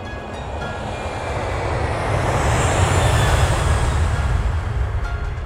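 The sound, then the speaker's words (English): A loud, steady roar of a plane flying past, building in intensity toward the middle with a rushing whoosh before easing slightly, with no voices. “See, it only really works with the plane, though, because if we did our boat...”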